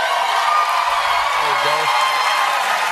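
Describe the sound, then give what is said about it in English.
A large audience applauds steadily after Kirsten Gillibrand announces she is filing an exploratory committee for President of the United States, a dense, even wash of clapping with a faint voice briefly audible underneath partway through. “I'm going to pause there in the middle of the applause.”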